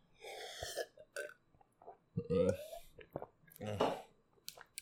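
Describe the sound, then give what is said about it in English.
Wet mouth sounds of someone sipping water: a run of short slurps and swallows with gulping, throaty bursts and brief quiet gaps between them. “Let me sip some more fucking water.”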